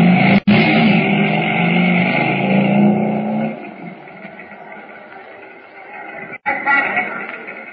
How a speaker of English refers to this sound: Carefully. Now, mount the motorcycle and get ready. I will open the door for you.